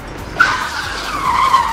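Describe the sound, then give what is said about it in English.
Tires screech loudly as a car brakes hard, a sustained high-pitched skid that starts abruptly and holds steady for over a second, with no voices. “Baron Baudelaire, seeing what has happened behind him, slams on his brakes.”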